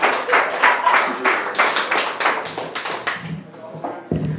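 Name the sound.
audience clapping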